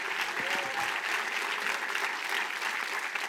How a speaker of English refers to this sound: In the tradition of faith, we ought to give, as I would say in my home church, the Lord a mighty hand clap tonight